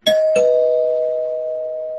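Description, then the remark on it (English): A spoiler warning bell rings twice in quick succession, two bright metallic strikes followed by a clear, sustained tone that slowly fades over about two seconds. No voices are present. “I've already rang the spoiler bell, so I'm warning everyone now, if you're listening and you don't want to get spoiled as to what happens here, I'm going to ring it again.”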